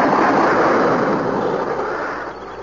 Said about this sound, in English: Listen. Ready? Aim! Fire!